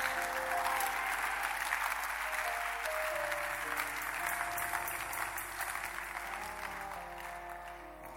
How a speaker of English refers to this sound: Somebody come and clap your hands.